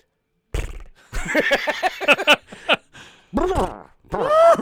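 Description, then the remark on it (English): A person imitates a horse whinny: a string of loud, wavering voiced bursts with rising and falling pitch, broken by short pauses and ending in a drawn-out neigh. “You gotta know when you got a hog that big that people making horse sounds, they're calling you horse cock.”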